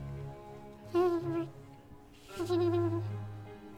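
A low, steady drone with two louder swells of wavering, tonal buzzing from giant bees, about half the size of a fist, flying in and out one after another high at the peak of a cave, with no talking.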